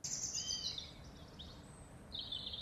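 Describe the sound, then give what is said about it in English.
Birdsong at the start of a song, with bright, high warbling phrases, one at the opening and another near the end, over a low, steady background hum. The calls sound fairly clear but not loud, with no talking. “Got a nice little bit of bird song in the first start of it as well.”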